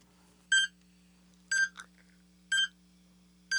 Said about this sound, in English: It's a YouTube video of a minute timer.